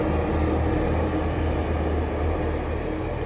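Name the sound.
tractor passing by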